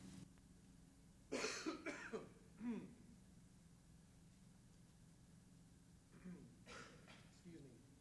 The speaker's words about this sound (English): I need to cough for a minute.